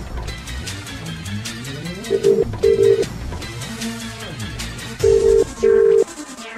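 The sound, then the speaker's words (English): A telephone ringback tone sounds in two double-burst rings, the classic 'brr-brr' pattern heard while an outgoing call connects to a competition winner during a live broadcast, moderately loud over steady background music with no talking. “Right, we're ringing our competition winner.”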